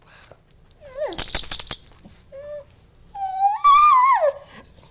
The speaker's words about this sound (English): This is my producer Amanda's dog, Truffles. As you can hear, she's whining about something.